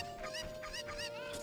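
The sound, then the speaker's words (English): A video game chicken clucks in a quick run of four or five squawky bursts over a steady electronic hum, with no one talking, as the player picks up the bird and tries to throw it into a well. “Why do you keep picking up the bird? I'm trying to throw the bird in the well.”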